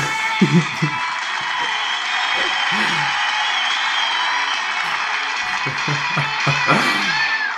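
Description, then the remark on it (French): A crowd applauds and cheers a DJ in a steady, dense roar of clapping, with scattered shouts and whoops rising above it throughout. “On l'applaudit bien fort!”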